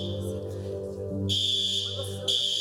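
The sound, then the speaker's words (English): A building fire alarm, pulled by a child in the kids' department, rings loudly and continuously, a steady piercing electronic tone that fills the space for the whole stretch, with faint background murmur underneath. “A child, we're not your child, but a child pulled the alarm.”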